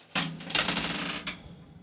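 Two dice clatter and tumble across a hard tabletop, a quick burst of rattling clicks that settles after a moment, with no talking. They are rolled for a character's cool check in a tabletop game and total nine.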